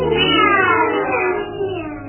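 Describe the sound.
A voice imitates a cat with one long, loud, drawn-out meow that slowly falls in pitch, lasting about two seconds.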